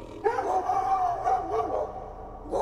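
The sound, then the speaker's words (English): Several leashed dogs in a cage in the snow howl and bark together in an excited, wavering chorus, straining at their leashes and scratching to get out, their drawn-out cries rising and falling continuously across the short stretch, loud. “The dogs are going absolutely mad.”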